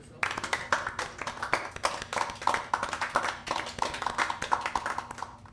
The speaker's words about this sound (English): the hilarious Adolfo. Applaud! Applaud for Adolfo!